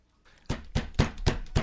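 Loud, heavy banging on a door, five forceful thuds in a steady, insistent rhythm, with no voices.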